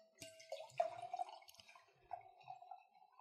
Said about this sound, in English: Let's have an actual pour. A whole glass?